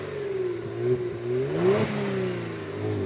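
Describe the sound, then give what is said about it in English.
A V6 car engine revs steadily, its harmonic drone rising and falling in pitch with a surge around the middle, fairly close and loud with no talking. “Is that the car? That's it. Can't make a V6 sound good.”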